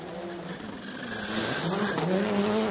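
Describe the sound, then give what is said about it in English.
A Subaru rally car engine revs hard and climbs in pitch, its harmonics sweeping upward over a gritty, continuous roar that grows louder toward the end. “So this is the Subaru cars. They both sound identical.”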